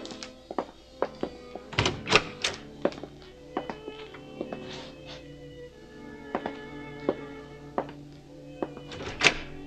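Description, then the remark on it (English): A married couple's bedroom door being opened, with a scatter of wooden thunks and sharp clicks from the latch and handle over several seconds, fairly quiet and with no one talking. “That door. My room and my husband's.”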